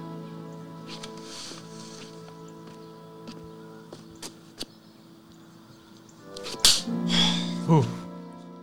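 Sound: face slap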